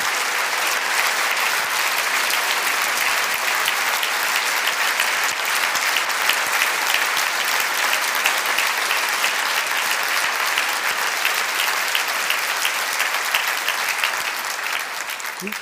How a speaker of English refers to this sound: You know, I know you're all clapping because you can feel the potential of this, and probably behind that you can feel the great joy that our guru must feel.